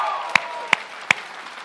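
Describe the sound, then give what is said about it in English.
Congregation applause for the church's fifth birthday: a continuous wash of clapping and crowd noise, punctuated by three sharp, louder claps spaced evenly about a third of a second apart. “Come on, give me a round of applause.”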